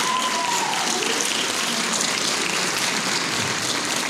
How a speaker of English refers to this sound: Round of applause for like the kids, man. I love seeing that.